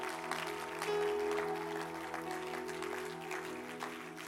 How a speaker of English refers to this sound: Why don't you stand as an act of faith and clap your hands to the Messiah that can do all things?